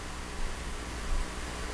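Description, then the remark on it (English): Muffled rustling of a microphone rubbing against the speaker's hair, with a couple of soft, low pounding thumps over a steady hiss and no one speaking. “You're hearing that pounding because it's probably rubbing on my hair,”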